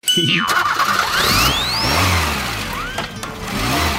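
The chuckle truck's engine cranks and starts up as it is given gas, then revs with rising whines and a steady rumble, loud and continuous with no talking over it.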